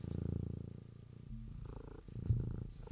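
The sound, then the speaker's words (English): A cat purrs, a low, steady rumble pulsing in quick rhythm, continuing for a few seconds with a slight shift in tone partway through. “That's Jim P purring because he loves his papas.”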